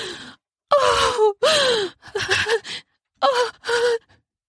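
A string of frenzied, breathy gasps from a woman as her body curls forward, five or six sharp bursts in quick succession with pitch sliding down, fairly loud, no words spoken.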